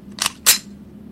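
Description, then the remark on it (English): Two crisp metallic clicks in quick succession, like the hammer of a flintlock being cocked back from both sides of a road through the woods, the second sharper than the first, over a faint low hum with no voices. “And then from both sides, you hear the sound of like the hammer of a flintlock being cocked back.”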